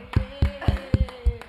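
A team claps hands for someone in a steady rhythm, about seven sharp claps roughly a quarter second apart, over a faint steady hum with no speech.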